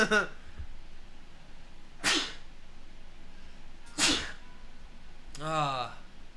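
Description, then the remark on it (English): Two sharp, explosive sneezes burst out about two seconds apart, framed by brief voiced sounds before and after. “Not even a single bless you?”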